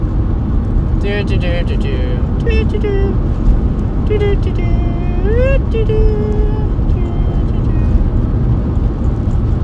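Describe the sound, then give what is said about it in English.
A police car passes, pulling over a truck driver, amid steady, loud road and engine rumble, its siren giving short, rising electronic yelps and whoops that come and go over several seconds. “There's the cops. I gotta stop moving my mouth really quick, guys.”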